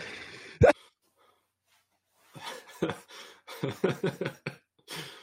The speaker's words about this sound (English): Okay, every time I laugh, I cough. Okay, all right, no more laughing because I start coughing, and that's it.